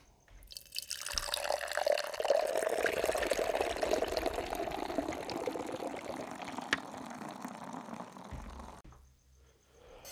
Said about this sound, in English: God damn, dude. That is fucking beautiful. There's nothing like pouring a nitrogen beer and just watching that action happen. Just watching this like reverse waterfall of the suds going up.